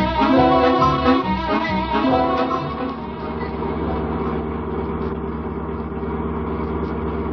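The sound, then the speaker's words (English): The Judge's car engine turns over and revs loudly for a few seconds, then settles into a steady, low rumbling idle that continues to the end, with no voices. “Start the car, Judge.”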